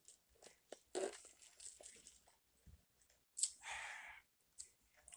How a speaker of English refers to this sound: And before we even do that, I'm going to take myself a sip of some vitamin water because I know it's going to be a very long show.